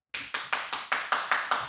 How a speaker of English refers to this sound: you want to applaud for me?